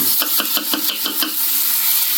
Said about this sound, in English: So I'll grab two eggs and just snap it over. Again, we're sauteing, we're not frying.